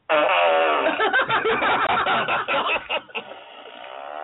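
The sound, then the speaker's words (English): A wet, sputtering fart sound, the 'wet and juicy' setting of a small novelty fart machine toy, plays loudly for several seconds, with bubbly, juicy pops that trail off into a softer rasp at the end. “It's a little fart machine. Apparently, there's different styles of farts on here. That's the wet and juicy.”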